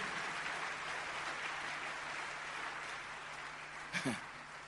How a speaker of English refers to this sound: Clapping is free, I've told you. It's free. You don't pay anything.